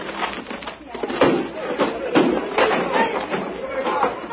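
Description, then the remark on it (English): Heavy, repeated blows and splintering crashes as men break down a door in a raid on one of Shadow Rory's places, landing at an uneven pace over a murky, lo-fi background with indistinct voices and commotion. “All right, men, break down the door.”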